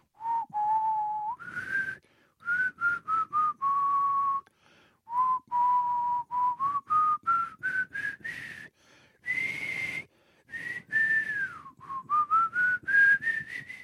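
A person whistles the Star Trek theme tune for about fourteen seconds, a wavering tune of short and held notes that rises and falls in pitch, with brief pauses for breath and a faint breathy edge.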